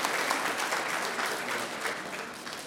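An audience applauds steadily, many hands clapping in a dense, even wash of sound that holds at moderate loudness for a few seconds without any voices.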